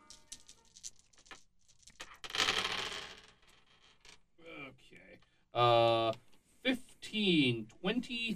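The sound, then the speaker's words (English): Six dice clatter and rattle across a hard surface in a quick burst of clicks, close and fairly loud, rolled for a proton pack move skill in a tabletop game. Voices follow afterward. “Oh, I do, in fact, have a move skill in proton pack. All right. So let's see here. That's six dice.”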